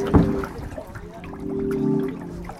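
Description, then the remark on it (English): Lake water sloshing and lapping in a steady, continuous wash, moderately loud, with a brief splashy surge near the start and no voices, at Cass Lake in northern Minnesota. “These are the water noises.”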